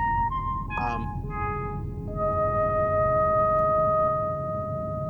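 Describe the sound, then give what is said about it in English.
A series of pure, electronic signaling tones steps through different pitches, with a quick rising chirp early on and then long, steady held notes over a low background rumble, used for signaling at Devil's Tower, Wyoming. “what they called the dark side of the moon, which was really the back of Devil's Tower, Wyoming, where they start signaling each other a series of tones.”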